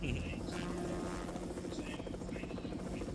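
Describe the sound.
Helicopters flying around overhead, chasing after people, make a steady, throbbing rotor drone that fills the whole stretch, loud and continuous, with faint voices mixed underneath.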